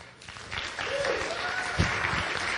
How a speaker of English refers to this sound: Can you guys clap for Jerry?